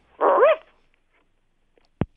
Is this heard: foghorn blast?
no